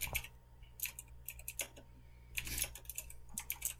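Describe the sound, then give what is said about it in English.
Irregular bursts of keyboard typing, quick clacking keystrokes with short pauses between clusters, quiet over a low steady hum. No one speaks. “Sorry, I'm just like typing stuff.”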